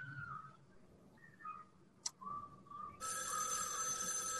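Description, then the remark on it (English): A telephone bell bursts into loud, continuous ringing partway through, after quieter faint tones and a sharp click, and keeps jangling steadily to the end with no one speaking or music, at the ending of a movie. “And you just get this haunting ending with the phone ringing.”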